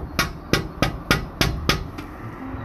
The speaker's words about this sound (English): So I peeled my sweaty ass out of the tent and wandered down to the offices of Belanger and Schlanger. I stepped up to the huge double doors and knocked.